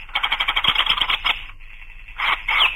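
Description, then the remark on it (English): A toy bird in a pretend cage gives a rapid, high chirping trill of quick repeated pulses, then falls quiet for a moment before chirping again in two shorter bursts, with no talking. “That is a pretend bird in a pretend cage.”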